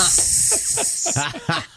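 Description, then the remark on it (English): A voice imitates air leaking from a balloon: a steady, bright hiss lasting nearly two seconds, with wavering voiced tones running underneath it. “Sure, we do that, or put a little BB hole in it and let it come down real slow. Yeah, it'll deflate eventually.”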